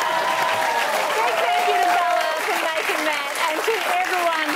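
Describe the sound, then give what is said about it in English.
Sustained, loud applause from a crowd on the show The Cheap Seats, a dense wash of clapping that holds steady throughout, with cheering and whooping voices rising above it. “I reckon that an applause might be...”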